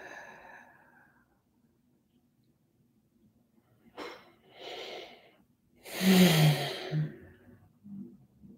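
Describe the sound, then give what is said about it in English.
Slow, audible breaths drawn in and then pushed out, ending in a loud, heavy exhale with a slight voiced sigh. The breathing stands alone in an otherwise quiet space. “Breathing it in.”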